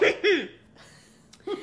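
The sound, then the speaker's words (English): Two quick coughs in succession, followed by a pause and one more short cough, each a brief throaty burst with a rough, voiced edge. “I'm gonna cough now.”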